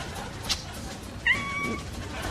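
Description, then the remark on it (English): A single short meow from a cat called Cinnamon, high and slightly wavering, over a low background hiss. A faint click comes just before it. “And of course, our newest charity initiative, arming stray cats who live on the mean streets.”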